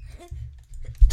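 A single sharp sneeze bursts out at the very end, loud and breathy, after a stretch of low muffled rumbling and faint shuffling.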